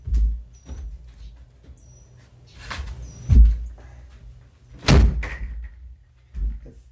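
A door is pushed shut, with faint creaks and scuffs followed by a couple of solid thuds as it closes, and a softer knock at the end. No one speaks.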